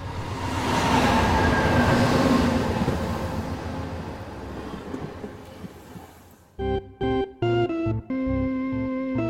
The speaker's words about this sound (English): And through all of these run a single train. It's called the Migrant Train.